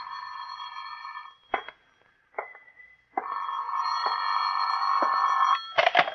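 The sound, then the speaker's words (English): A telephone bell rings in an office in long, sustained bursts separated by short pauses and a few clicks, fairly loud, with no voices. “Phone's ringing”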